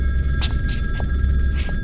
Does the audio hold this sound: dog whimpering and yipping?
no